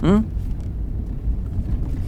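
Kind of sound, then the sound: vehicle, car driving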